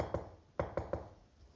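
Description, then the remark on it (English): Knocking on the huge wooden door of a cottage: a single hollow knock, a short pause, then three quicker raps in a row, each sharp and resonant, fairly soft overall with no voices. “She went to the huge door of the cottage and knocked.”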